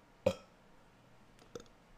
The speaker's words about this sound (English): Gotta burp.